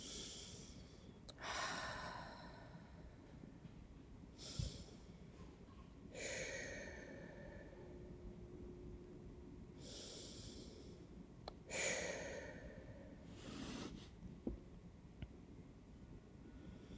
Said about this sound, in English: Now we're going to breathe, bring some breath into it. So take three cleansing breaths.